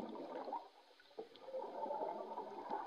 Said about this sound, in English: God, it's very hard to tell with the bubbles, isn't it?